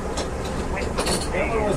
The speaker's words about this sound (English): What? On the bus? Why? I'm on the bus.